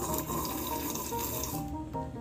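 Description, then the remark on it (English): A continuous wet slurping of a drink, a gurgling, hissing rush of liquid lasting a couple of seconds, loud and steady before its bright edge fades slightly near the end. No talking. “Well, if you listen to us on a regular basis, you know at the beginning of our episodes, we do a little slurpy slurp out of our drinks, similar to this.”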